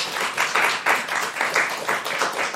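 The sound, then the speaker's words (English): A crowd applauds with dense, steady clapping that swells and dips in loose waves, a bright crackling wash of hands with no voices over it. “Give them both a round of applause there, everybody.”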